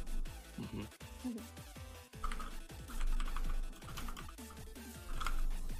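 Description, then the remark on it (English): Rapid, irregular clacking of keys on a computer keyboard, fairly loud, with a steady murmur of background sound beneath the typing. “Oh, why am I typing that?”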